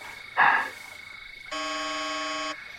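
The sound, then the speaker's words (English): A brief rushing burst of noise, then the rift alarm, a loud electronic buzzer, blares one steady, harsh tone for about a second before cutting off abruptly. “What's that? It's the rift alarm.”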